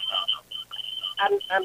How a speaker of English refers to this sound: Go ahead and turn your radio down, though.